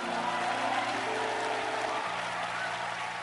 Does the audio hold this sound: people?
no